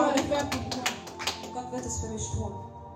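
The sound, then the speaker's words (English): A group claps hands in a quick, steady rhythm of sharp slaps for over a second, then the claps fade into a mix of voices speaking and calling out together. “Can somebody clap your hands and say God will do it for me?”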